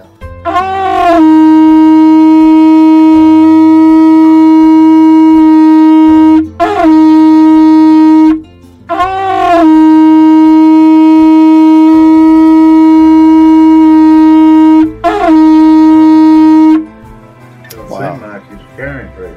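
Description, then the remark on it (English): A hunting horn, blown to call dogs, sounds in long, steady, brassy blasts on one held note, each long blast followed by a short one, played loudly twice over, then faint talking follows. “And the last thing we do before we bury them is my son blows that horn, and it's symbolic to us that as we lay them to rest, that we're calling their dogs in for the last time.”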